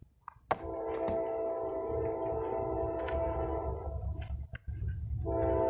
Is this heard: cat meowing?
no